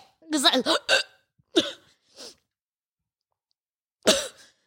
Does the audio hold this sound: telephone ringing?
no